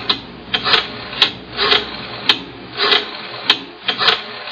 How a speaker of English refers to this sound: Rotary phone. Yeah, that's right. It's a rotary phone.